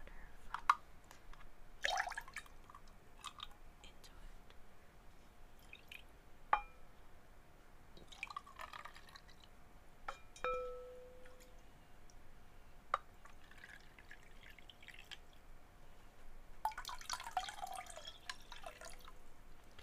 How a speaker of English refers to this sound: We take the little pot, we scoop some water into it, we pour it into the tin.